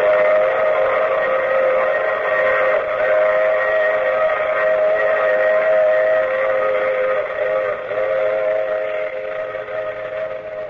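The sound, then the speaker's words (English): A train whistle blows in one long, loud, unbroken wail for about ten seconds, its chord of steady tones holding full before easing slightly at the end, with no voices. “I take this same train every week.”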